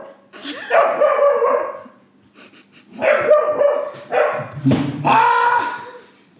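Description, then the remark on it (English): A dog named Chimbo gives four loud barking calls in quick succession, each drawn out and strongly pitched, with short gaps between them and no talking. “If you've been listening to this podcast for the last three episodes, you'll have heard a dog of note, mm-hmm.”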